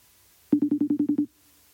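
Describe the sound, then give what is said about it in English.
A phone ringing tone as an outgoing regular (not FaceTime) phone call is placed: a quick trill of eight rapid electronic beeps lasting under a second, fairly loud, with no one speaking. “I should just regular call. I'm regular calling. Answer the phone”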